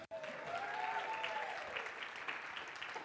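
A church audience bursts into steady, sustained applause, dense clapping filling the whole few seconds at an even loudness, with a faint rising and falling tone, like a whistle or cheer, drifting through it.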